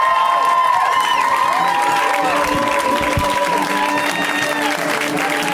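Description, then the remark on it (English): A crowd applauds and cheers loudly and steadily for several seconds after a comedian's set, with dense clapping running underneath rising and falling whoops and whistles, staying at roughly the same strong level throughout. “Let's hear it for Sean one more time.”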